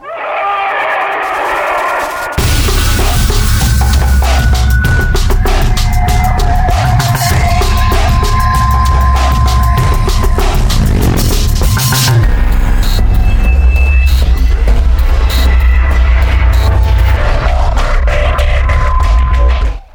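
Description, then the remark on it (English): Seafaring-style music starts softly, then swells abruptly into a loud, dense arrangement with sustained melodic tones over a heavy, steady low-end rhythm that runs throughout. “Seafaring music.”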